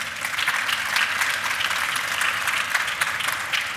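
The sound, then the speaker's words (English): An audience breaks into steady applause, a dense, crackling wash of many hands clapping at once that holds an even, fairly loud level throughout without any voices. “I have just recognized soft power in action. Go ahead, please applause.”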